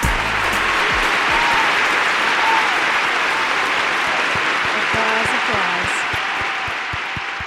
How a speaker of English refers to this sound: Applause to all our viewers right now. Gosh, you know, here's to us, right? Here's to us. Everybody deserves a round of applause.